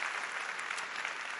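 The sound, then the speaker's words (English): Steady audience applause for two staff members, a dense wash of many hands clapping at an even, sustained level with no pauses or voices breaking through. “Go ahead and applaud them one more time.”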